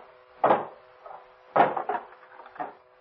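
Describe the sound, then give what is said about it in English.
Heavy wooden blows from a hammer land twice, each followed by smaller knocks and a splintering rattle, as a door is forced open until it gives. No voices, just the loud, irregular thuds. “Go on, give me that hammer.”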